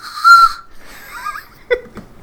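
A breathy train whistle blown by mouth in a short shrill blast, followed by fainter wavering whistle tones and a few puffs of breath. No one speaks.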